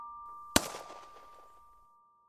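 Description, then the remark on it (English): A single sharp pistol shot, fired by a man with the pistol raised to his temple, cracks out loud, then rings off in a fading echo over about a second and a half, with a faint steady high hum underneath. “It wasn't the shot that frightened me the most, or the explosion of gore that painted the walls behind him.”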